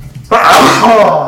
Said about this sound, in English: Excuse me. Bless you.